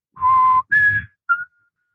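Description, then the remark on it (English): A short whistled tune of three notes: a low sustained tone, a higher held note, then a brief clipped note, clear with no talking. “He said, I heard you whistling as you were coming up the stairs.”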